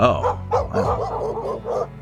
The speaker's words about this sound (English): Oh, hey guys, I hear a whole bunch of dogs over there. They sound like they're in pain or something. I think we should check it out. The party rushes toward the sound of the barking, yipping dogs.